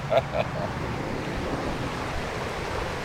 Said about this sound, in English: Phil's just climbing out now onto the Tolman Stone, and the river's running furiously past below